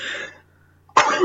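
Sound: sneeze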